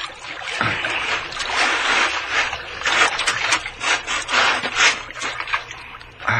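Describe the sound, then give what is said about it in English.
A wooden rowboat scrapes and drags with a steady grinding rub as it is pulled ashore, as if over sand or gravel, in uneven pulls that surge and ease, fairly loud, with no voices. “I'll hold on tight so you can pull the boat ashore after us.”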